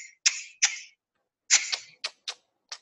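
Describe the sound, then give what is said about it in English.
A voice produces the Xhosa X click consonant: a series of sharp lateral clicking sounds with the tongue, like the clucks used to call a horse, about seven clicks in irregular bursts, fairly loud with no talking. “For Xhosa, it's a letter X. It sounds like a wall clock when it's ticking. No, actually, it sounds like when you're calling a horse.”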